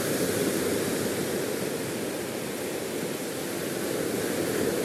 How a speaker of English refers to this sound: So here I am at the sea, watching the waves break over and over, just like me.